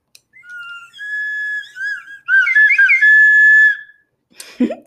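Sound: whistle being blown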